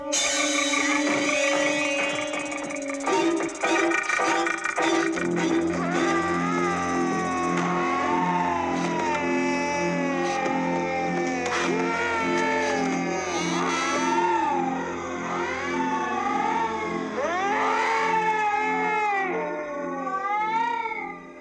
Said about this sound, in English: anytime the children were dying or getting hurt or their hands were being chopped off, they used this sound, this weird, moany kind of sound. And I looked it up. And what it is cats in heat slowed down.